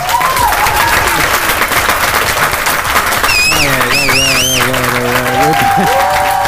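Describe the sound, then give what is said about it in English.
Dense, steady applause from a crowd fills the whole stretch at a loud, even level, with a warbling tonal whistle or sung note rising above the clapping partway through. “What a shitty crowd today.”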